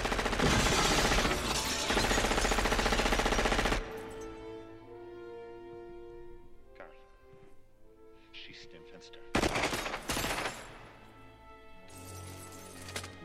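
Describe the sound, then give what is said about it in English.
A loud, sustained burst of gunfire and shattering glass from a film scene, with a character shooting the glass, fills the first few seconds, followed by a quieter stretch with voices and tonal sound, then another short crashing burst near the end. “Also a great choice to deliver the line and shoot the glass.”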